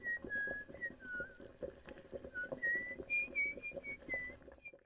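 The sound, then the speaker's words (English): A woman whistles a wandering melody, clear sliding notes that climb higher toward the end, as she watches a pot with liver in it boil, over a steady low bubbling and rumbling background that cuts off abruptly. “… laughs as she walks over and drops the liver into the pot, then whistles as she watches it boil.”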